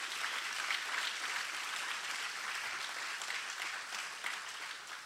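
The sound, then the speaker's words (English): An audience gives Jesus a big hand clap, a dense wash of many hands clapping at once with no pauses, fairly loud and sustained for several seconds before easing slightly at the end. “Come on, give Jesus a big hand clap for that.”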